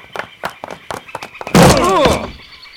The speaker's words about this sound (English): The table over there. Let's ram it against the door.